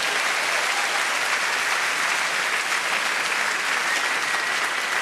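An audience claps in a steady, sustained round of applause, a dense wash of many hands at an even, fairly loud level throughout, with no voices on top.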